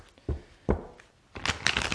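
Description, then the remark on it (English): Papery tarot card shuffling: two short flicks followed by a longer, brisker riffle of the tarot cards being mixed together, with no talking. “Shuffle my cards.”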